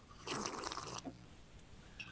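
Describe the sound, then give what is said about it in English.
A single noisy slurping sip of coffee, lasting under a second, followed by quiet with a faint swallow. “I didn't get my sip of coffee in.”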